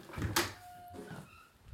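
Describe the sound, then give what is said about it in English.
A door is opened, with a sharp click of the latch followed by a brief creak and soft rustling, all heard without any talking. “Well, I'll open the door.”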